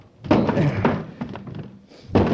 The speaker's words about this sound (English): I'll see if I can smash the door.